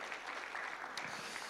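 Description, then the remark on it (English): A church audience applauds Pastor Greg and Leslie in a steady, dense wash of clapping that holds at an even loudness throughout, with no voices standing out above it. “Give it up for Pastor Greg and Leslie one more time.”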